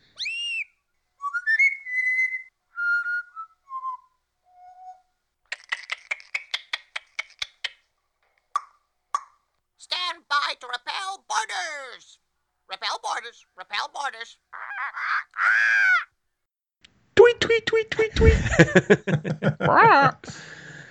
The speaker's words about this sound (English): All right, well, there it is. That is officially the Barker Bird outside of the Pirates of the Caribbean. He was there from the early goings of Pirates of the Caribbean.